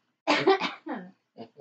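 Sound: sneeze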